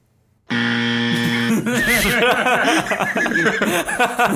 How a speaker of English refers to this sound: Do you have like a buzzer on there? Because that was terrible.